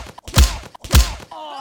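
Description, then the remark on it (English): Two identical cartoonish comic-book punch impacts, added to the film scene of Hermione punching Draco, each a whooshing smack with a deep thud, land about half a second apart, followed by a brief wavering, tonal comic sound effect at the end. “Okay, but can we do it again, but this time add funny comic book sounds?”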